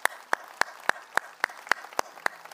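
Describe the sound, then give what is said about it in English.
Applause for the Lord Jesus from the audience at Faith Church after a prayer, heard as about ten sharp, evenly spaced claps in a steady quick rhythm over a faint murmur of background noise, with no talking. “Come on, can we give some wild applause to the Lord Jesus today?”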